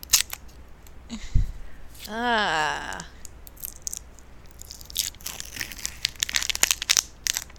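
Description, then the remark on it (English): A crinkly food package is torn open with a pull tab, giving irregular crackling and rustling bursts. A dull thump and a brief voiced hum come early, then the crinkling grows denser toward the end. “So I'm going to, you can hear me open it.”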